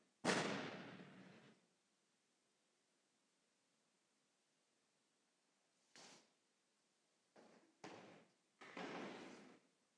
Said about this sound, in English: You know, behold, I stand at the door and I knock. I just sort of want to make sure who's at the door there.